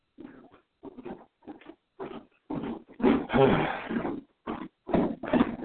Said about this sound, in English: At 205, defensive end, Jeremiah Ledbetter from the Arkansas Razorbacks. Oink, oink.